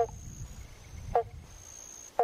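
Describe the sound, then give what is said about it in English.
Banjo frog (pobble bonk) calls: short, hollow, plucked-sounding 'bonk' notes repeating about once a second, three times, over a quiet night background with a faint steady insect whine. “The banjo, oh, this is not a bird, this is a frog. The banjo frog, also known as the pobble bonk.”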